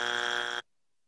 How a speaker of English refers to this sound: I love that Chris added in the buzzers. That's good production quality from you, Hype Train.